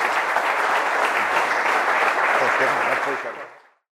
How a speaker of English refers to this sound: Round of applause for Frank Panisi.